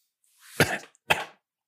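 Two sharp, raspy coughs in quick succession, close up and fairly loud, with a short pause between them and silence around them.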